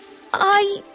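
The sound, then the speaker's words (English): A single short, high-pitched pig oink or squeal, voiced by a person imitating the animal, rising sharply and fading after about half a second, fairly loud, as a muddy pig comes up, jumps on a flat car and nuzzles Bruno. “Oh, she's all muddy and smelly and delightful, said Bruno, as the pig came up, jumped on the flat car and nuzzled him.”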